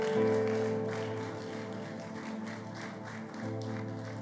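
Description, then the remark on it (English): An audience claps steadily and densely as a clap offering to God during worship, the crowd's applause washing over sustained keyboard or organ chords that hold throughout, with no one speaking. “Give God a good clap offering.”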